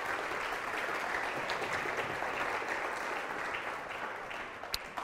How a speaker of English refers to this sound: We give those guys a clap.